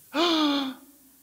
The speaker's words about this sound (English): Yeah, you let that gasp.